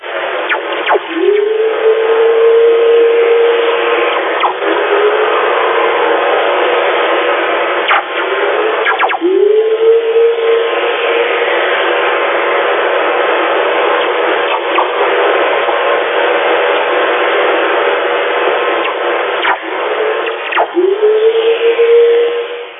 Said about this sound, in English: you'll hear whistlers. You'll hear the ones like we just heard, the boom, boom. But after a few of the stronger whistlers, you'll hear this sort of eerie, ghost-like proton whistler sort of kick in after it. So just try and listen out for that.